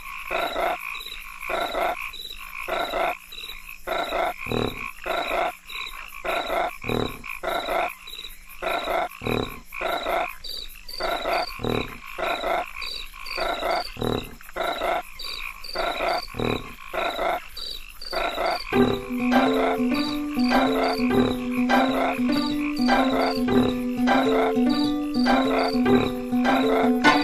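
Frogs croak loudly in a steady, rhythmic chorus of repeated pulses. Near the end a sustained low droning tone joins beneath the croaks. No one speaks.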